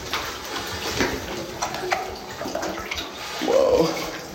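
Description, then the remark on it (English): Water splashes and sloshes as divers wade and slip off a ledge into a cave pool and begin swimming, with irregular bursts of churning and a louder surge of splashing near the end. “The ledge drops out beneath us, and we're swimming.”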